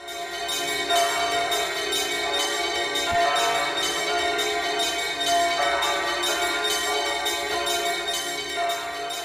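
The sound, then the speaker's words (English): Bells ring together in a dense, continuous wash of overlapping tones, loud and sustained for the whole stretch, with no voices. “Bells, of course, we associate also often with churches, and you're using bells in your composition?”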